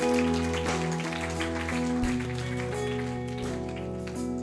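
Steady crowd applause, a dense crackle of many hands clapping, continues for several seconds over sustained keyboard chords holding low, droning notes.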